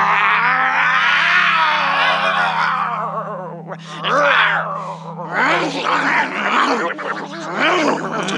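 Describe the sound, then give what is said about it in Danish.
Loud voices of people playing at being lions, imitating lions: one long, drawn-out growling roar, then a run of shorter, rougher roars and grunts, with a steady low hum underneath. “Jeg er sikker på, at I er de farligste løver i verden.”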